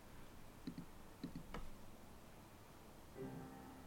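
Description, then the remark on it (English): A few quiet computer mouse double-clicks to start Spotify on shuffle sound in quick pairs against a soft background hiss, followed after a pause by the faint start of a tonal sound. “I'm going to double click, and let's see what we get.”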